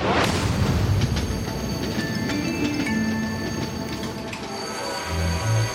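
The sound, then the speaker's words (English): A speeding, out-of-control train rumbles loudly and steadily along the tracks, with high metallic whines and squeals riding over the deep continuous roar of wheels on rails. “But how about we take the time to investigate causes after we stop the out-of-control train from killing thousands of people?”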